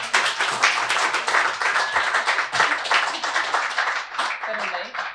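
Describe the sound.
A crowd gives a steady round of applause to welcome a speaker who has just been introduced: dense, many-handed clapping holds a loud, even level for about five seconds, with some voices mixed in.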